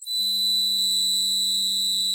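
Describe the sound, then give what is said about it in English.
A toy bird whistle sounds one steady, shrill tone layered over a low, buzzing hum, held continuously for about two seconds, loud with no talking. “A bird whistle. It like whistles and hums at the same time.”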